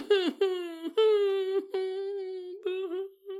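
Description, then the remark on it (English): An adult voice mockingly mimics a crying newborn, letting out a string of drawn-out, wavering wails in quick succession, fairly loud, with no other sounds around it. “Imagine a grown adult, almost mockingly, pretending to cry like a newborn.”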